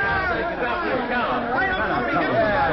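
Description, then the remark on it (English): A crowd of onlookers chattering: a steady murmur of many voices at once, an unbroken hubbub of overlapping talk at an even, moderate loudness with no single voice standing out. “Heavenly days, look at the crowd, McGee.”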